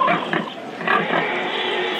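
A pig in the town of Modin, which the king has ordered slaughtered, grunts and oinks steadily for a couple of seconds, fairly loud, with rough snorting squeals and no talking over it.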